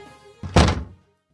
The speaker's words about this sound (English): We join Do Nothing Man as he ambles down the stairs from his nothing napatorium in a soiled bathrobe. He makes his way to the kitchen, opening and closing the cabinet doors.